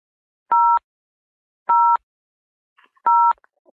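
Three telephone keypad tones beep at a steady pace, each a short, bright two-pitch chirp lasting about a third of a second, with quiet gaps between and no talking, as a button is pressed on a phone during a call.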